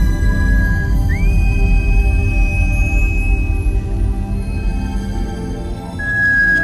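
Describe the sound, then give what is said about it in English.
An alien creature's thin, high communication whistle holds a steady tone, swoops upward and sustains for a couple of seconds, then returns briefly near the end over a loud, dense low rumble. “We see that they do this little weird, like, kind of whistle, and they bring, like, the hands into, like, a V formation and kind of whistle.”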